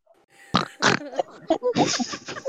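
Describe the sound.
A person imitates a pig's oinks with a string of loud, raspy snorts and grunts, two sharp bursts followed by a longer, throaty run.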